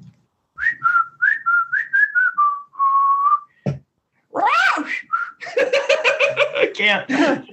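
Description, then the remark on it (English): A person whistles a quick series of short, chirpy rising notes, then a long steady tone, mimicking a parrot, before breaking into loud laughter with a voice joining in. “Yeah, what's your whistle?”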